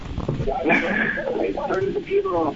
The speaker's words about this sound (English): Echo.